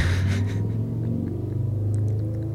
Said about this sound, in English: They leave at 5 o'clock in the morning every morning too. Is this necessary for them to have this kind of loud truck? Car? I don't know. I think it's a motorcycle. That's annoying. I'll let it pass.